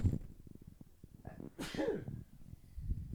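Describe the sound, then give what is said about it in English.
A single loud sneeze bursts out about halfway through, a sharp breathy blast after a brief intake, with low murmuring sounds before and after. “I'm about to sneeze.”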